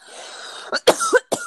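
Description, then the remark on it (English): After a brief breathy hiss, a person with a lump in their throat gives three quick, rough coughs, the middle one stretching into a raspy, voiced throat-clearing rumble before a final short hack. “I got a lump in my throat.”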